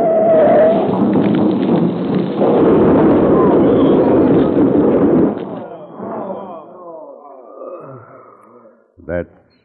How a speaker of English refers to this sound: What an awful way to end. Smashed up in the wreck of a flaming freight car.